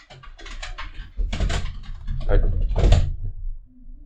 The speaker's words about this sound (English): Our dogs are running laps upstairs, and we can hear it. So you may have heard that, too, in the sound.